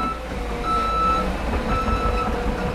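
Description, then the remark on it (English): A dump truck's reversing alarm sounds over the steady, heavy rumble of its diesel engine as it unloads fresh snow onto a frozen lawn in Minocqua to build a 40-foot snow figure, the beeping tone holding at a constant loudness throughout. “Instead, dump truck after dump truck spill loads of fresh white snow onto the Visitor Bureau's frozen lawn, where it's scooped up by a towering yellow backhoe.”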